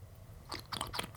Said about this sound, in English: I do. While I take a sip from this completely original mug. Make sure it's audible.